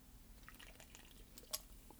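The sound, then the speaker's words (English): Two people sip their drinks at the same moment: soft, wet slurping and small liquid gulps, quiet overall, with one sharper wet click midway and no talking. “Twin sips. Yeah, you guys should have seen that.”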